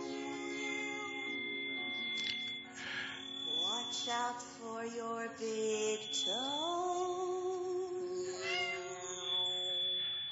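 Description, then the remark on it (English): A cat meows almost continuously for about ten seconds, its drawn-out, fairly loud cries sliding up and down in pitch with a few sharper upward swoops, and no talking over it. “That person owns a cat.”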